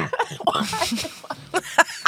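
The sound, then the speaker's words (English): A woman's string of rough, breathy coughs in irregular bursts, several short hacks tumbling together before a couple of sharper ones near the end, with voiced sounds mixed in. “I got her mid-cough, you guys.”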